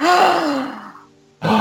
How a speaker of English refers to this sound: Gasp.